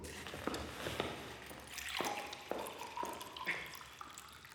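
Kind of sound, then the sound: household object, water poured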